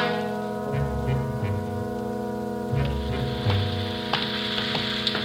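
Steady rain falls in Los Angeles with a continuous hiss and scattered sharper drops, heard alone beneath a low, sustained humming tone.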